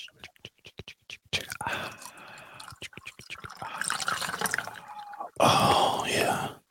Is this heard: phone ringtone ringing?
no